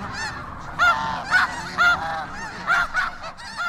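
A goose honks repeatedly in loud, nasal bursts about every half second to second, with a few softer calls between and no talking.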